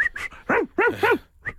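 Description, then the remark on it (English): A dog barks several times in quick succession, short sharp yelps with a slightly whiny edge, fairly loud, with no voices. “Do let us know if your dog is responding to that.”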